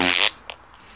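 A man farts in a woman's face: a short, loud, buzzy fart blasts for a fraction of a second, followed by a couple of faint trailing sputters and quiet. No one speaks.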